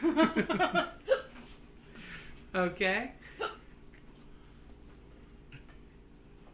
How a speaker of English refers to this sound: Okay, so she's Mom. Got the hiccups.